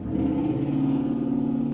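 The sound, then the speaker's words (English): A loud car engine revs outside an apartment, its steady low rumble rising slightly in pitch as it accelerates, with no talking over it. “I'm so grateful for those loud cars.”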